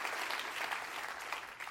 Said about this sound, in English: Come on, clap your hands and rejoice to that.